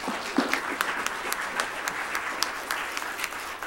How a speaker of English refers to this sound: Applause.